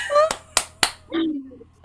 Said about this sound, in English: So yes, a big round of applause for our special guest.